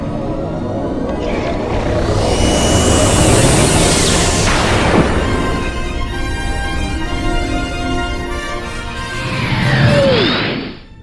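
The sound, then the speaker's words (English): Spaceship warp engines engage with a loud, dense roar, rising whining sweeps sliding upward over a heavy rumble that swells and holds, then a second sweeping whoosh builds near the end. “Engage warp engines now.”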